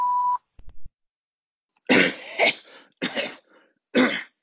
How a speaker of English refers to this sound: Hello, we are not available now. Please leave your name and phone number after the beep. We will return your call.